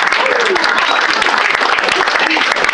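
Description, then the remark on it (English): The Punchline audience claps for itself at a stand-up show, a dense, continuous wash of many hands with loud, even energy throughout, and faint voices mixed into the noise. “So, Punchline, round of applause for coming out for yourselves when you could be protesting.”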